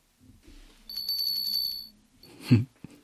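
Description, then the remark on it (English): A small, bright cafe door bell in the Alexa skill Kitten Cafe rings for about a second with a shimmering, sustained tone, then fades, followed by a soft thump. No one speaks. “Is that the cafe bell?”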